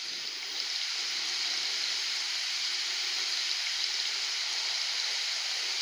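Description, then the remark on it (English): A steady, unbroken hiss of gently falling rain, soft and even in loudness from start to finish, with no voices or other sounds standing out. “As my words, along with this background soundscape, can help bring you visions of a gently falling, powerfully healing, cleansing rain.”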